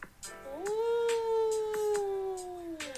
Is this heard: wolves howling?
yes